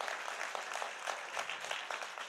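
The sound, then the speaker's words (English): An audience applauds Jesus together, a dense, steady wash of many hands clapping with no single claps standing out, holding at an even level for a couple of seconds. “And I think Jesus needs the biggest clap for us because of the victory that he has in our lives.”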